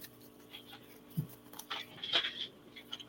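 A deck of Divine Energy oracle cards being shuffled before a card is pulled: quiet papery rustles and light clicks in short, uneven bursts, with one sharper flurry near the middle and no talking.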